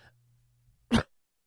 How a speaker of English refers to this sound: Whoops, took a deep breath and coughed.